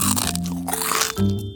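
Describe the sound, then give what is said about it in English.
Crisp crunching of crackers being bitten and chewed, a steady run of brittle crackles with a louder bite near the end, no voices. “Let's get cracking on your next favorite snack, crackers.”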